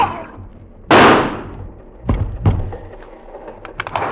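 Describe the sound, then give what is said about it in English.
A gun is fired in a dim train compartment: a single loud gunshot cracks out and rings away over about half a second, followed by two heavy thuds and then a few faint, scattered knocks. “I felt something hard under me, the gun. In the dim compartment, I saw them coming at me, Chiniara and Dvikar. I raised the gun.”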